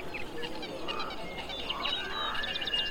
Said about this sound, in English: There's only one sound that makes it through the filter. Birdsong. Birdsong makes it through.